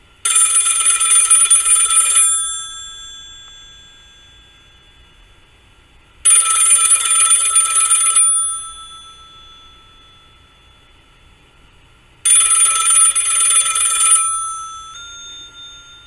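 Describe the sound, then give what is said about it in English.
A telephone on a bar rings three times in steady, evenly spaced bursts, each a bright, loud, trilling bell lasting about two seconds, with quiet pauses between and no one talking. “The phone on the bar starts ringing.”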